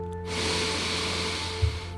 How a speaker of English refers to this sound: Before we begin today's meditation, let's practice our breathing by taking in one big, deep, cathartic breath.